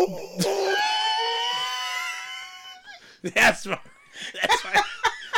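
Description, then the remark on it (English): A person imitates a wolf with one long, wavering howl held for a couple of seconds, then breaks into loud laughter and excited talking. “And speaking of wolves, wolves! It's upon us!”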